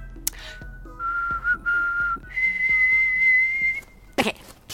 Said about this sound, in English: Now, I'm going to whistle something, and you copy me.